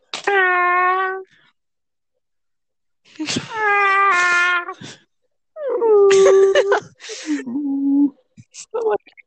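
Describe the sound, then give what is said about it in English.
A person imitates Carl Wheezer's cartoonish, overstuffed groaning moan from the movie, where he moans because he is so full, in three drawn-out, wavering bursts with short pauses between, ending in a few brief grunts. Fairly loud, with no other talk. “Because, like literally, like he moans in the movie because he's like so full.”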